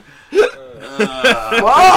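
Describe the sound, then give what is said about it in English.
Loud hiccups from a person, about four sharp voiced catches spaced irregularly over two seconds, the last one blurring into a strained, breathy vocal sound. “Who gave me these hiccups?”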